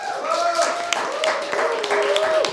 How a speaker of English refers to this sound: So let's just give Studio 12 a round of applause.